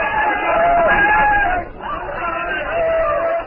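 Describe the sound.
A crowd of voices shouts and calls out together outside a cavern, a steady, loud babble with raised, drawn-out cries rising above it, dipping briefly midway before swelling again.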